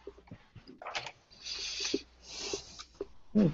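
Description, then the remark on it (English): Heavy breaths blown straight into a boom microphone: two long, hissing rushes of air, with small clicks and rustles between them and a brief low thump at the end. No one speaks. “Not that we don't like you breathing. I mean, you could just stop breathing it too.”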